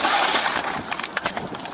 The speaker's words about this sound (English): Cops arrive on the scene to find a pickup truck totally engulfed in flames. There's a man trapped inside. One of the cops uses his baton to smash the window.